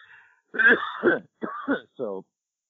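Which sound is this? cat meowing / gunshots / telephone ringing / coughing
coughing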